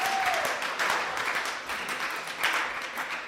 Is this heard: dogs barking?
no